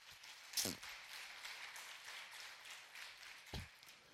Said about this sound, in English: Now's the time of giving. For those, give the Lord a hand clap. I like that.